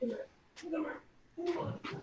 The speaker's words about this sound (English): That's either your stomach or it's a dog. it's a basset hound.